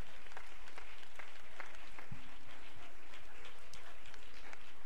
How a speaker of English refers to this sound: Praise God. Praise God. Let's clap our hands to the Lord one more time.